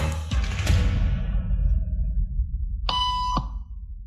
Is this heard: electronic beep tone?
yes